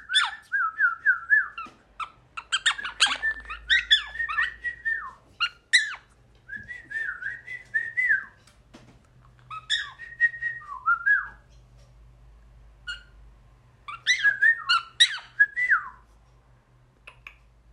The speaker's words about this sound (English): having an interspecies conversation with a bird friend.